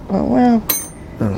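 A bell is slammed once with a sharp, bright metallic clang that rings only briefly, framed by a drawn-out vocal groan before it and a voice resuming just after.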